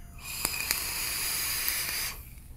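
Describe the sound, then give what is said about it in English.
A steady airy hiss of someone drawing on a flooded vape with fused Clapton coils, held upright, for about two seconds, broken by a couple of sharp spitting crackles early on, then cutting off abruptly. No voices. “I'm getting a very nice flavorful vape, but I think it's so flavorful because juice is literally like scorching the roof of my mouth.”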